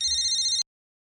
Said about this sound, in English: Oh, it's my cell phone. Excuse me.